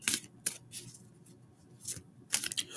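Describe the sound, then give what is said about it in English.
Tarot cards being shuffled: a series of crisp, papery riffles and snaps in irregular bursts, with quiet pauses between them and no talking. “Gonna shuffle again.”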